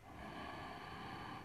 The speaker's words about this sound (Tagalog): kapag sobrang agit ng isip, balik ka lang daw sa paghinga. Hinga ka lang daw ng malalim.